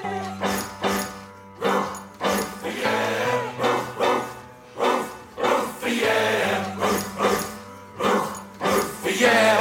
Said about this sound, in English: And, well, so he says, there sure are a lot of dogs out this evening.